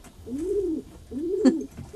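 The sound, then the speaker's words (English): Soft, low cooing from pigeons or doves, two rounded rolling calls in a row, moderately quiet, with no voices present. “Did you see what time it was when she went out to feed her birds?”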